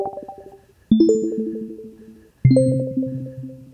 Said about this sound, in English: I always liked chimes more than music at the top of shows.